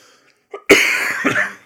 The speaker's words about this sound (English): I'm getting a little cough for suspense.